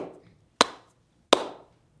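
Three slow, deliberate hand claps closing a formal welcoming ceremony in a Fijian village, evenly spaced, each one sharp and loud with a short ringing decay, heard alone with no talking.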